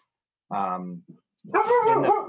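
A dog gives two loud, drawn-out barks or yowls, roughly half a second each, separated by a short pause.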